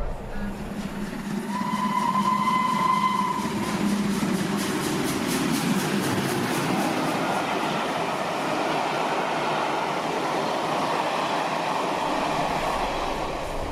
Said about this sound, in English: Our train rests for 50 minutes at Challow to take on water.